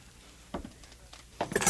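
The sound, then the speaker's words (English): A bunch of cell keys jangles briefly: a soft metallic clink first, then a brighter rattling jingle near the end, fairly quiet, with no one speaking. “These, I presume, are the keys to the cell?”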